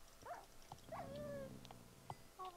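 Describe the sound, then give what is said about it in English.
A video game dog yelps and whines in pain as a player attacks and kills it, several sharp cries and a drawn-out whimper in quick succession, clear with no voices over it. “I'm killing the dog.”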